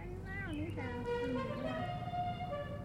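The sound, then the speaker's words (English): A musical car horn plays the opening notes of Dixie as the car passes Drew High School on a warm, placid spring afternoon, a short run of loud, buzzy tones stepping up and down in pitch over a steady low rumble. “A car horn sounding the first few notes of Dixie as it passes by Drew High School today on a warm, placid spring afternoon.”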